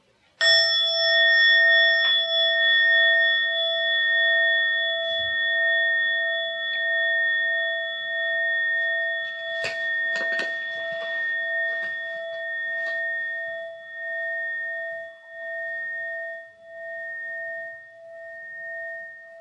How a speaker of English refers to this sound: So I'm going to ring the gong once to let us know we're beginning, and then I'll ring the gong twice at the very end.